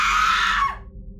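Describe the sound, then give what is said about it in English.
A woman lets out a loud, shrill scream of terror lasting under a second, cutting off abruptly and leaving a low background hum. “Tituba screamed.”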